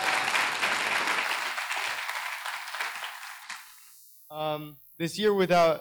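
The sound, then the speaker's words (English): A crowd applauds a pastor steadily for a few seconds during a morning talk, the clapping thinning and fading out before a person begins speaking. “Give him a clap, everybody.”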